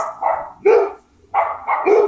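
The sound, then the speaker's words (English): Dogs bark repeatedly in quick, loud bursts, several sharp woofs in an uneven rhythm, with no one talking. “My dogs are irritating the fucking shit out of me and I love me.”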